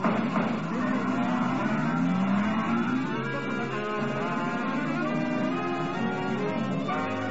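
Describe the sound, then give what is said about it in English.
A car engine roars as the driver hits the gas, climbing steadily in pitch as it accelerates away, then holds a loud, steady drone with a faint rattling hiss over it. No voices. “Later, you idiot. Hit that gas.”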